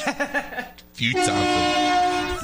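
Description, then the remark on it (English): A brief burst of voices gives way to a loud, sustained horn blast that holds a steady, brassy tone for over a second. “There's the horn. There it is.”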